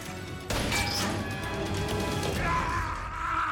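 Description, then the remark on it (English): A glass crusher machine suddenly kicks in and smashes fake glass made of plastic on a film set, producing a loud, continuous crunching and shattering clatter that runs for several seconds without any voices. “The famous Glass Crusher.”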